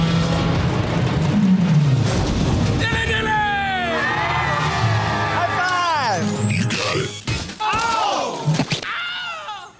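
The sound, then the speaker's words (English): Loud, drawn-out screams in the style of the Wilhelm scream, with several wailing cries whose pitch swoops and falls, layered over a busy, rumbling background. “Not Wilhelm, but sort of Wilhelm scream?”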